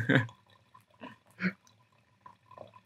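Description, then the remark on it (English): A little more water being poured into a coffee maker, coming in a few short, uneven splashy glugs, fairly quiet, with pauses between the bursts. “So adding a little more water to it now.”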